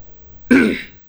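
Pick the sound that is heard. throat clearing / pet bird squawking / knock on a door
throat clearing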